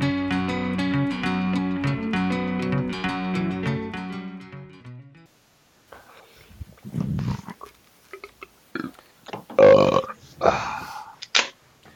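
A few seconds of steady music end, and after a short silence come several loud belches in irregular bursts, some long and rumbling, others short and sharp. No one speaks.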